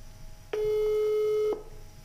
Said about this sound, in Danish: Skal vi prøve at ringe og høre? Vi kan prøve at ringe.